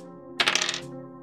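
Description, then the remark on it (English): Two dice rattle and tumble across a tabletop in one quick burst of clicks lasting under half a second, set against a steady, low tonal background. “All right, I only need these two dice moving on.”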